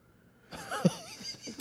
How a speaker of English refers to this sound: Had to sneeze there. Go ahead. Oh, my God. Bless you.